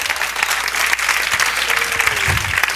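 An audience claps their hands in praise of the Lord, a dense, sustained wash of applause at steady volume for a few seconds, with a brief faint tone and murmur underneath.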